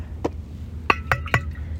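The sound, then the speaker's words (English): A glass clinks and taps several times, four sharp ringing knocks in under two seconds, over a low steady hum, as someone handles a glass to drink water. “I will actually drink some water.”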